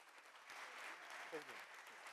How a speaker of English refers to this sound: In the name of Jesus, let us receive the man of God with a clap offering unto the Lord. Come on.